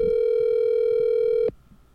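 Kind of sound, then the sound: signal or alarm, outgoing phone call ringing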